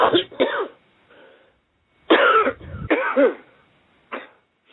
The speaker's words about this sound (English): Now take one deep cough and he'll burn the rest of them out. Go ahead.